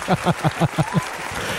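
One person gives themselves a round of applause, clapping their hands about six times in a quick, steady rhythm, each clap crisp and fairly loud, followed by a moment of quiet background hiss.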